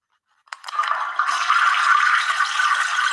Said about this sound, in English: Water go down the hole. I had to do the toilet flush, man. I had to, man.